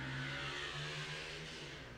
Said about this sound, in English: After that motorcycle goes by.